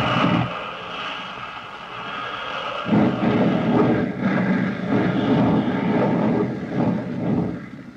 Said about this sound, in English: Suddenly, the motor sputters and coughs. A spray of oil whips back along the fuselage. With an angry whine, the gallant plane dives toward the ground.